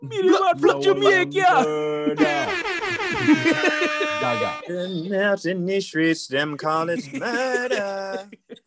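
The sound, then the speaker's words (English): A loud, brassy air horn blares in a rapid burst of repeated blasts for a couple of seconds, with people talking and singing before and after it. “I don't know why that air horn like put me Canada.”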